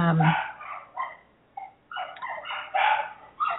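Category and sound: animal, dog barking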